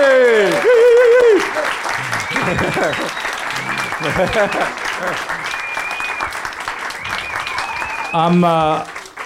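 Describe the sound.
Audience applause at the Bookworm fills the whole stretch before the event starts, a dense, steady wash of many hands clapping, with loud voices cheering and calling out over it at the start and again near the end.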